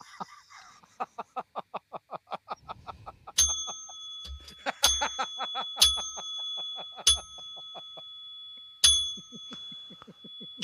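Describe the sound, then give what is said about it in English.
A bright bell rings out ten times as a ten-bell salute, in a series of sharp strikes at uneven intervals, each tone lingering and ringing on, preceded by a quick run of rhythmic clucking pulses. “Tony with a 10 bell salute.”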